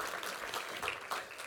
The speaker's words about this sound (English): Round of applause for our Rudolph princess. Well done.